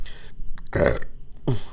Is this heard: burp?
yes